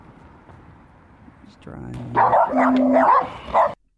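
After a quiet stretch, a dog breaks into loud, rough barking, a quick run of overlapping barks over about a second and a half, ending in one last sharp bark before it cuts off.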